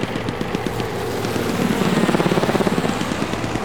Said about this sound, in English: Get that chopper down here now.